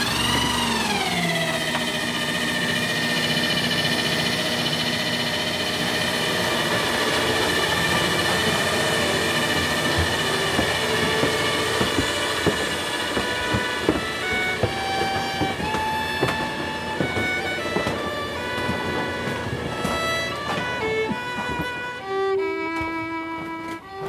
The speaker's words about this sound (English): constructs an old-time dumbwaiter to transport the dinner up from the kitchen to the dining room. So, up it goes.